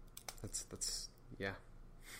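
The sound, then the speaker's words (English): A ballpoint pen clicks several times in quick, uneven succession as someone fiddles with it, fairly quiet, with faint wordless vocal sounds mixed in. “If you hear any clicking, it's probably me fiddling with the pen, doing that, clicking it.”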